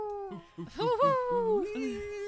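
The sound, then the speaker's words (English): A voice imitates a cat and a demon fighting, with loud wavering yowls and growly tones that rise, dip and shift pitch in one continuous burst. “In the distance, you hear a cat and demon still fighting.”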